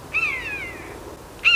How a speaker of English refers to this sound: This is what a common buzzard sounds like.